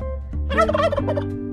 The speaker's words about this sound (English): So if you're celebrating Thanksgiving, happy Thanksgiving. Cue the turkeys.